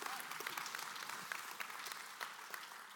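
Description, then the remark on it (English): A church audience claps together in a steady burst of applause, dense overlapping hand claps at an even, moderate loudness, with no voices rising above it. “That, yeah, you guys are better than first service. They didn't even clap.”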